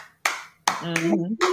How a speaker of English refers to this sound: I had to teach my children. Listen, we got to teach them the history of the Charleston clap. Because they was like, every song? Yes. Every song.